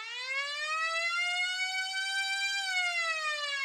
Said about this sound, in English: And there goes the buzzer to end the period, and our show as well.